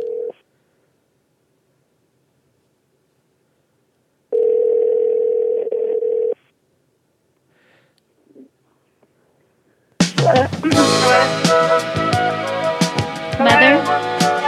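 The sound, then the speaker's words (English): An outgoing phone call's ringing tone as a call is placed to someone's mother: a steady electronic tone sounds in a brief blip, then a two-second ring after a pause, before loud voices and busy noise abruptly take over. “That was our calling you.”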